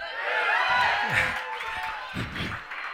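A live audience cheers in a steady, dense roar that fills the whole clip, with a few louder voices and whoops rising briefly above the crowd noise.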